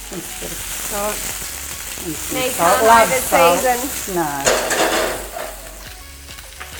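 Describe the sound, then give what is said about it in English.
Steady, crackling sizzle of food frying in a pan runs throughout, with a brief stirring scrape, while people talk over it. “You really got to hear that fizzle.”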